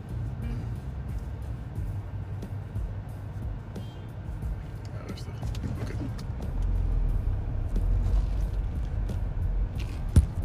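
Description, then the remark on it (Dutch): A car rolls past with a low, steady engine rumble that swells toward the end, alongside faint clattering and a sharp knock near the close. “Auto.”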